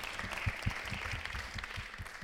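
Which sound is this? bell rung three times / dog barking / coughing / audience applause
audience applause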